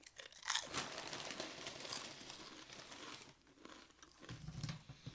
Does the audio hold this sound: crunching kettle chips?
yes